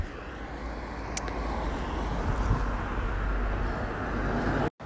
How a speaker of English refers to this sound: Oh, it's calmed down now. Suddenly it was a rush of traffic.